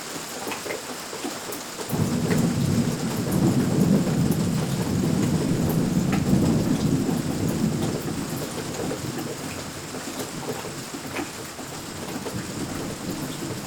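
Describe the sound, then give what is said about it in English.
Steady rain hisses and patters throughout while a deep, rolling rumble of thunder swells in after a couple of seconds and slowly fades, no voices present. “Anyway, here's a little bit of thunder and a little bit of rain for you.”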